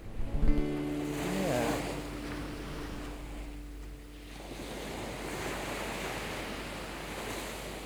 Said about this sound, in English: So the Ghost is a sleek ship, her sails are sharp, her decks are clean. The dark wood of her prow cuts through the grey face of the sea with a rush and surge of spray.